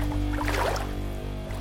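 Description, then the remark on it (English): A small boat bumps to a sudden halt against a vast, ancient mangrove tree, a brief hollow knock and splash of water rising midway, set over a steady low droning hum with no one speaking. “See how the boat bumps to a sudden stop.”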